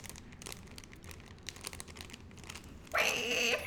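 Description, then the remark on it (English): Paper being crunched for ASMR, a steady run of dry crinkling and crackling that swells into a louder, denser crumple near the end, with no voices. “You just crunch paper a little bit here.”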